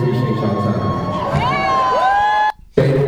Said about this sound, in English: Fans so stupid, they cheering. They don't even know the show over.